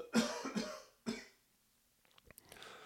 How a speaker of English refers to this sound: Just coughed away from the microphone. The thing that you don't want to do, or maybe you do, but the thing that I don't want to do is cough right into the microphone like I did earlier.